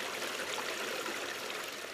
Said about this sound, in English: some of the rills you can even put your feet in and dabble around in to really help you cool down on a summer's day